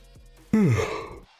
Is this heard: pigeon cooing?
no